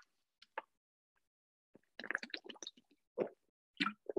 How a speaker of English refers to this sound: Okay. Sorry for a second. I'm going to drink some water.